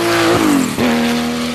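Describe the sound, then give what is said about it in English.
A loud race car engine screams at high revs as the car passes the grandstand, its whining tone dropping sharply twice as it goes by. No voices, just the continuous roar of the car. “All right, going past the grandstand.”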